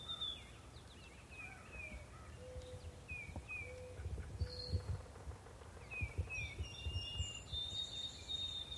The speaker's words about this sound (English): And in the foreground is a white-throated sparrow, doing its classic, "Oh, Sam, Peabody, Peabody," call, as it forages through the leaf litter at the base of the brush pile.